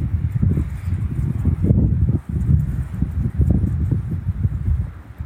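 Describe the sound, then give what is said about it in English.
Strong, warm wind blows steadily on the shore of the big lake Gitchigami, its low, gusty rumble buffeting the microphone for the whole stretch, with brief lulls between surges and no voices. “It's windy here on the shores of Gitchigami, the big lake. A warm wind though.”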